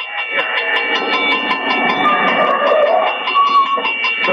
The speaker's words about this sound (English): there's the bell. Huh? What's that, my dear? There's a train coming.